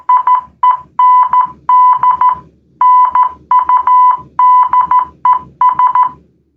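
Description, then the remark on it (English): A steady mid-pitched electronic tone from a phone Morse code app, translating typed text, keys on and off in Morse code, short dots and longer dashes grouped into rapid bursts with brief gaps between characters, playing alone without any voices. “I downloaded a Morse code app. You can type stuff out and it translates it into Morse code.”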